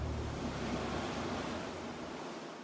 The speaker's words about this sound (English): Then a great storm came up with thunder and lightning. The wind howled, the rain came down in torrents, and the waves got so high, they splashed right over the boat.